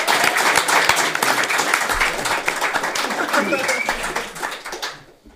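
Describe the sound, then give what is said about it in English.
A crowd breaks into sustained applause for Michael Brooks, senior producer of Frontier Development, coming up on stage: a dense, bright wash of many hands clapping at a steady loudness for about five seconds before tapering off quickly at the end. “Big round of applause for Michael Brooks, senior producer of Frontier Development.”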